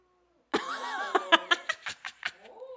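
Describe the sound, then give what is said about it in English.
A male cat lets out a wavering, throaty growl that breaks into a quick run of about six short hissing spits, each a little softer than the last. “I don't want him to hurt you. He's like a Halloween cat.”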